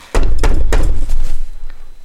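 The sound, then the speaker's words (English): Three loud, heavy knocks on the door of a house in quick, even succession, each a deep thudding rap, followed by a few softer, lighter taps as the sound trails off. No one speaks. “Why do we knock on guys? I have a key.”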